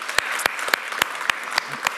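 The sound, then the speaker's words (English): A crowd applauds steadily, a dense wash of clapping with a few sharper, louder claps popping out at a regular beat. No one speaks over it. “Yeah, let's give it up”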